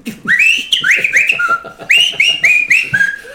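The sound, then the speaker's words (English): A man whistles a short signal tune while moving through a club, a quick run of rising, sliding notes played twice in a row, loud and clear with a faint low rumble underneath. “Through the club, whistling.”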